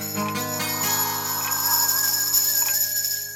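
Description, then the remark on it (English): A grandfather clock chimes with sustained, resonant bell-like tones that ring and slowly overlap, steady in loudness, with no voices present. The clock is at the old War Metal estate at nightfall, being adjusted by Atlantis. “As night fell at the old War Metal estate, Atlantis was adjusting his grandfather clock when Effigy peeked out from behind it.”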